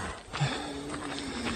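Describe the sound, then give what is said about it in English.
A mountain lion snarls at a runner on a road in Utah as it stalks him, a harsh, raspy growl that rumbles steadily for about a second and a half with a low tonal undercurrent, and no voices over it. “That, my friends, you're not getting me, dude, is a runner in Utah being menaced for 6 full minutes by a mountain lion that is stalking him as he is walking slowly backward back up this road he came down.”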